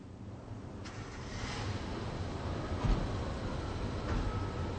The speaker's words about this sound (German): Puh, ist das kalt und windig hier. Ja, liebe Hörerinnen und Hörer, heute stehen wir an einem wirklich kalten Platz.